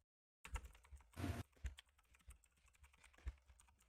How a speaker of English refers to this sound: My keyboard is loud as fuck. It is.